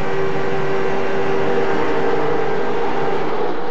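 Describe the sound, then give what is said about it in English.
A dense, loud roar of 43 race car engines running together down the back straightaway at the 40th Daytona 500, steady and continuous with a droning hum, filling the whole moment without any voices. “Gordon comes up to speed as 43 cars uncoil down the back straightaway.”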